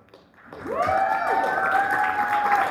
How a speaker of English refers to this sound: I'm glad you guys are clapping. Thank you. Thank you. I appreciate that. Makes me feel better, right?